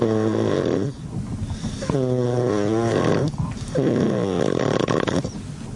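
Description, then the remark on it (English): Loud snoring in three long rattling, droning breaths with short pauses between them, no talking alongside. “Wow, that far to get to the snoring.”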